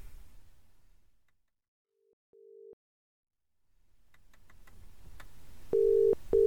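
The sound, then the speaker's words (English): A short steady telephone tone, then a series of faint dialing clicks, followed by loud repeating tone bursts of a phone line ringing. No one speaks. “You won't be top of her popularity poll, but you need to ring her and ask her for the landlord's phone number.”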